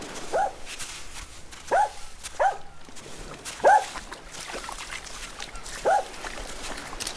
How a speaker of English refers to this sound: Oh, God, what's he found now? He's barking at something in the water.